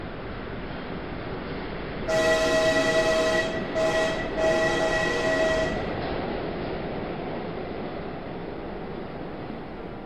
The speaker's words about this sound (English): I stood there watching the red light of his train disappear.